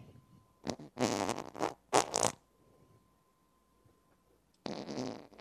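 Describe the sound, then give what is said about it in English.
A series of loud fart noises, several rapid sputtering blasts ending in a wet squelch, then a pause of near silence before one more raspy burst. “I was like a couch fart.”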